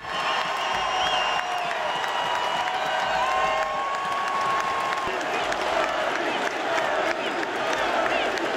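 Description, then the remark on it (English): A huge hockey arena crowd at a Penguins game roars in sustained ovation during a tribute video for a returning former goaltender, steady applause and cheering filling the space at a constant loud level, with occasional whistles and whoops rising above the din. “The ovation was tremendous when the Fleury video happened.”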